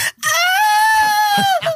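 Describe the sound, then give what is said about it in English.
A person imitates the scream of pain they gave after landing flat on their back on a mat: one long, loud, high-pitched cry held steady for over a second, wavering slightly before its pitch drops and it breaks off with a short tail. “That's how I would have screamed.”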